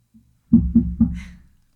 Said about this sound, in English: Suddenly, there's a knock on the door. What do you do? Who is it? Just knocking again. Hey, who is it?